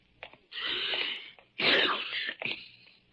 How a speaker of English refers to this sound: Ah, confound it. I do not have a cold. A man can sneeze, can't he?